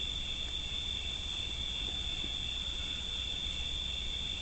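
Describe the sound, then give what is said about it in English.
A steady chorus of crickets trills continuously at a high pitch, unbroken from start to finish over a soft low background hum, with no voices present. “We simply rest present and the crickets come to us singing.”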